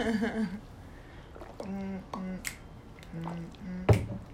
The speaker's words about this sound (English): Drink your ice water. I'm sorry. Love me some good old ice water. It's good for your skin.